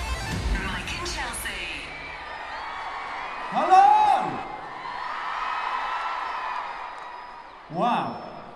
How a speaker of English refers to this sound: That deserves a round of applause, doesn't it? Come on. Thank you.